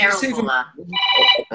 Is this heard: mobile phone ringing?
yes